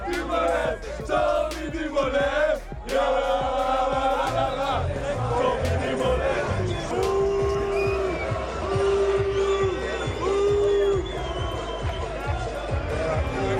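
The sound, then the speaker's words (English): A large crowd jeers and boos loudly and continuously at a passing team truck, voices overlapping in a dense roar, with a few long horn-like blasts sounding in the second half. “we just heard a lot of booing.”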